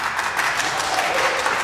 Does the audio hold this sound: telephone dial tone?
no